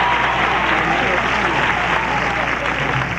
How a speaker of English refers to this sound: August 25th, 1980, at the end of the premiere of the musical 42nd Street, on the 11th curtain call, the producer, David Merrick, appears from the wings to tumultuous applause.